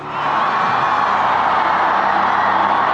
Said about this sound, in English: The crowds cheered as the white smoke emerged from the chimney at the top of the chapel, and then the bells of St. Peter's began to ring.